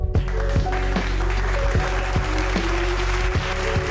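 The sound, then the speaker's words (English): A crowd applauds a guest on the show for about four seconds, a dense, even wash of clapping with a faint musical tone and soft regular thumps running underneath. “Let's give him a major round of applause.”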